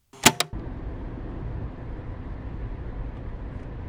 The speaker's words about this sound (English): In the car driving up to Wenatchee.